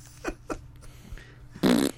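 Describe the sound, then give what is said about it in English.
Two quick soft pops, then a loud, buzzy fart lasting under half a second. No voices are heard. “Yeah, there would have been a sound effect, dude.”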